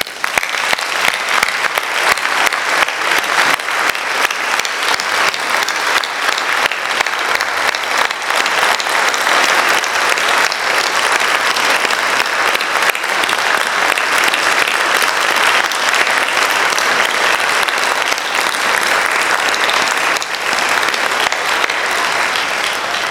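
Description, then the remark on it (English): An audience applauds the men who go to church, a dense wash of many hands clapping at an even, loud level for over twenty seconds, with no voices rising above it. “And it makes them men that need to be encouraged and men that need to be applauded.”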